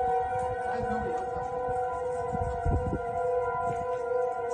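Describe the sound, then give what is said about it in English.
A tornado siren wails in a long, sustained, steady tone, its layered pitches holding level throughout, over a rumbling, gusty low-frequency background noise. No voices. “The noise in the background is supposed to be the tornado sirens.”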